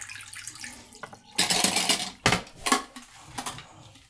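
Liquid is poured out of a developing tank in a sustained gush, followed by a few shorter splashing glugs and drips into a sink, with no voices, shortly before the water stop is added.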